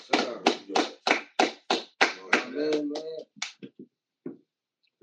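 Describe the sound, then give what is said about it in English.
A run of about seven sharp, evenly spaced hand claps, followed by a brief voiced whoop and a few softer, scattered claps trailing off into quiet. “Let's give a claps up to that.”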